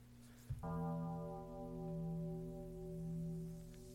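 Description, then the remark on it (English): A deep church bell tolls once at the start of the theme from The Dream Child, part 5, and rings on, its low hum swelling and fading gently as the tone sustains for several seconds, with no voices. “Starts with church bells.”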